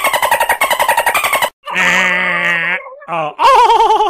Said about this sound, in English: Put the Dolphin noise in.